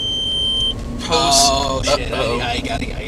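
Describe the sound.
A thin, high-pitched car warning beep sounds for under a second with a few quick pulses, then a person starts talking over the background hum.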